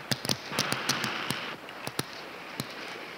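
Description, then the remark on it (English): Sharp wooden clacks rattle off in quick, uneven bursts, like a stick dragged along a picket fence, about a dozen crisp hits over a faint hiss with no voices. “Sounds like a kid dragging a stick across a picket fence.”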